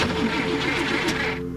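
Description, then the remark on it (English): A truck engine is started, cranking with a rhythmic, chunking churn, then rising into a steady mechanical whine as it catches, fairly loud, with no talking. “The engine made a chunking sound, and then whined to life.”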